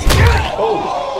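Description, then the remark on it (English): A single heavy thud, a groin kick sound effect, hits hard at the start with a boomy low-end impact, followed by a brief ringing, resonant tail that fades out. No talking. “But he deserves that a groin kick. Deserves this.”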